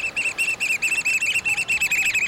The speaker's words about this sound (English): Crouching on a rocky shoreline on the Pacific coast, hearing the piping call of the black oyster catcher, a stocky blackbird with bright red eyes and a stout orange-red bill, perfectly suited for jabbing limpets and mussels.